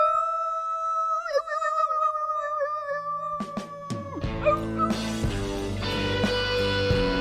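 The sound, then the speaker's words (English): A group of people howl together in a long, wavering wolf-like imitation, holding the note for several seconds before a swelling burst of music rises up and takes over. “So let's, like an om at the end of a fucking yoga class, let's just all howl together and then end it right there, okay?”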